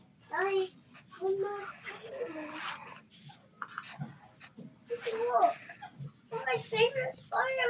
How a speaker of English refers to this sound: Let's normalize kids in the background on podcasts.